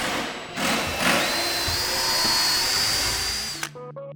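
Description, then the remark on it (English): Power drills and drivers whine steadily as people working in small teams build benches and a bookshelf, their motor pitch rising and holding, with short bursts starting and stopping before the whirring cuts off near the end. “Everyone's using drills and drivers.”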